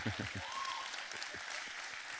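An audience breaks into applause, a dense, steady patter of many hands clapping at a moderate level for a couple of seconds, with a brief voice at the very start.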